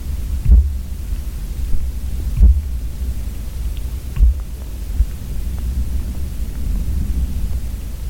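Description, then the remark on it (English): Muffled, low thumps from a tree being banged, carried almost 100 feet through the ground into a hydrophone: three dull thuds roughly two seconds apart, then a fainter one, over a constant low rumbling hum. “started banging on a tree. And you could hear the sound passing through the ground into the hydrophone.”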